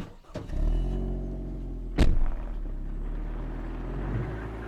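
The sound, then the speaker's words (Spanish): A taxi's engine idles with a steady low rumble, broken by a sharp, solid door thud about halfway through as the passenger gets out of the car; no voices are heard. “Pagó 5 pesos por la prisa con un billete de 10 y se bajó del auto sin esperar el cambio.”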